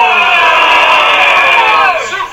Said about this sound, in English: Go ahead and keep booing because negative energy is just as good as positive energy.